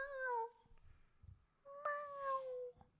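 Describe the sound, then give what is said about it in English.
A person imitates a sad cat with two drawn-out, downward-sliding meows, each wavering and mournful, separated by a short pause. The voice is fairly loud, with no other talking. “We all meowed earlier and no one's done a sad cat.”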